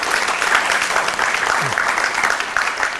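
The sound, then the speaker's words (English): A crowd applauds steadily to welcome a visiting professor from UCLA at a Film and Media Department event, a dense wash of many hands clapping at an even loudness for the whole stretch, with no voices standing out. “He's coming up from UCLA, so give him a big round of applause.”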